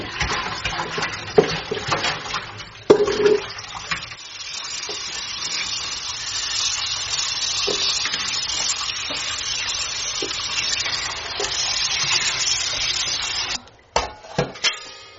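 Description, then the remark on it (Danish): Water is poured out of a pot where fish had lain for 24 hours and splashes, then a tap runs in a steady gush with occasional knocks and clatter as the fish is rinsed beneath it; the flow cuts off near the end, followed by a few handling sounds. “Så nå tenker vi å slå all ut og skylle den godt og legge den over i regnskapen.”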